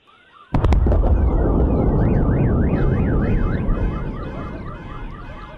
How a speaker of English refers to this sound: That sounds like a bomb went off. And obviously, you hear the car alarms and everything going on after that. Yeah, no, I mean, I love that clip because the car alarms going off really hit home how powerful these are.